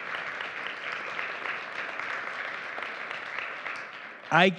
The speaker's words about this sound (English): Everybody, stand up anyways. I don't care. Huge round of applause.